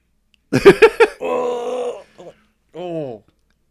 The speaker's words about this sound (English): And why do Cybermen's screams hurt me so?